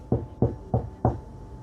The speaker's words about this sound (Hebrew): ערב אחד נשמעו דפיקות בדלת.